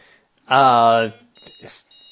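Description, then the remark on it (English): A quiz timer alarm sounds as the lightning round time runs out, a single loud, harsh electronic buzz lasting about half a second, followed by quieter scattered noises and faint voice-like sounds. “And luckily, the timer ran out because that was the last lightning round question I had.”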